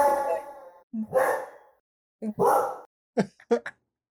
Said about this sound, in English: Corgi bark.